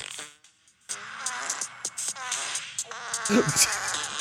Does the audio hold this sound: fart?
yes